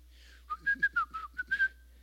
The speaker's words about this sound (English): You know, you're whistling Dixie, so whistling while you're working.